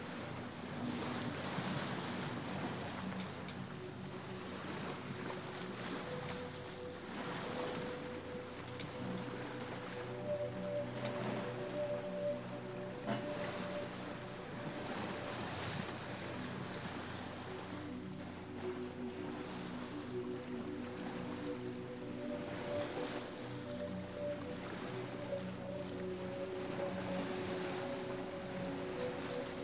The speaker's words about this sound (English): Occasionally, cold water from the sea gently splashes your face and bare arms.